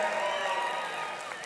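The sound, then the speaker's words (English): An audience in a Missouri church cheers loudly, a dense, steady wash of many voices and shouts that holds at full strength for the whole brief moment, easing only slightly toward the end. “Don't cheer too loud, because some of us are, wow, who thought in a Missouri church?”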